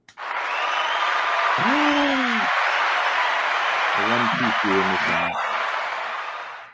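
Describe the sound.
Steady, dense hand clapping runs almost the whole time, loud and close, while a voice calls out a drawn-out exclamation and then a few short cheering syllables over it.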